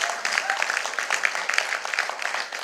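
A round of applause fills the space, dense and steady with many hands clapping at once, moderately loud and sustained for a few seconds with no voices on top.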